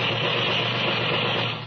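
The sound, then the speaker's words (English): A Tommy gun fires in one sustained, rapid rattling burst, harsh and steady for nearly two seconds before tapering off at the end. No voices are heard. “Hey, Sam, get out that Tommy gun.”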